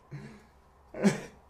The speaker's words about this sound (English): I'm literally going to cough and just see if you can put it in there.